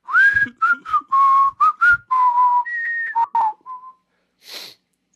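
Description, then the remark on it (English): A person whistles the Caillou TV theme tune, a string of clear, bright notes in a bouncy, stop-start melody, ending with a short breathy puff. “Yes, whistle the Caillou theme again.”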